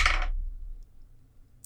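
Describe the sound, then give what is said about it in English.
Dice tumble in a short clatter onto a tabletop for a perception check, fading into a low hum, followed by one more brief clack at the end; no one speaks. “Let's try this dice.”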